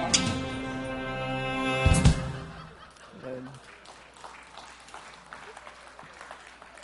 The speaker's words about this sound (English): I didn't write it, but I appreciate the applause. Thank you.